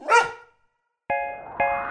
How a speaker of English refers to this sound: My dog loves to run in the park. Chasing a stick is a lark. But when a squirrel's nearby, you'll hear him cry when he lets out a mighty bark.